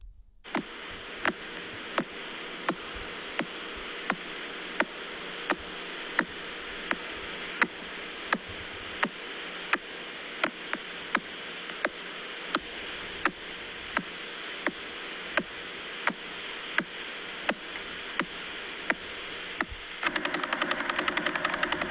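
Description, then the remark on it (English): A radio signal from the Veil Pulsar, which rotates 11 times a second: sharp, evenly spaced clicks tick steadily through a dense bed of static hiss, keeping a regular rhythm for about twenty seconds with no voices. “That's the Veil Pulsar, and it rotates 11 times a second. That's the clicking sound.”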